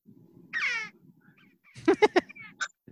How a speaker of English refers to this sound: Here's a bird. I'll show you.